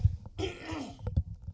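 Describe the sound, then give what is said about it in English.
A person clears their throat, a rough, raspy rumble lasting about a second followed by a couple of short low grunts, with no talking. “My apologies for the throat clearing.”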